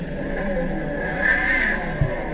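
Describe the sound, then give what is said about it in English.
An artificial engine sound played through a speaker in a car with no exhaust: a steady, buzzy synthetic drone with a whine that swells briefly in the middle, and a short thump near the end. “They put a speaker in a car because they knew people were going to be upset that there was going to be no exhaust”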